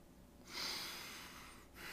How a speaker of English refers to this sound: breathing.